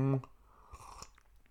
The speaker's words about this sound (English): Slurping in the mic. Hey, you know, just authenticity.